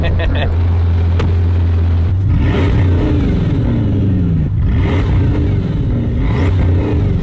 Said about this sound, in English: Yeah. So it's like turbo noise. It's four turbos.